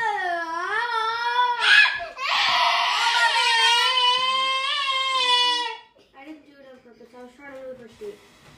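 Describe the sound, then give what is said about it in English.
A child lets out a loud, high-pitched scream inside a house, wavering and sustained for several seconds, then drops off into quieter, softer vocal noises. “Also, screaming inside the house is not appropriate.”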